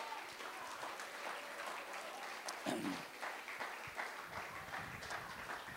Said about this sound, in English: Somebody come on and clap your hands and praise God. Hallelujah.